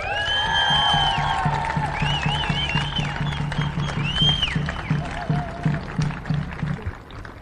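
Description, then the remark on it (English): An audience gives a speaker one more round of applause, clapping loudly and steadily for several seconds, with high whistles and cheering rising above the dense clapping before it gradually thins out toward the end. “Can we just give her one more round of applause?”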